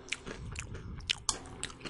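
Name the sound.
crunching chips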